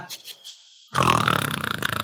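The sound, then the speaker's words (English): A voice mimics loud snoring: a brief breathy inhale, then a long, harsh, rattling snore that rumbles on loud, with no words spoken. “Just like he snores like a T-Rex.”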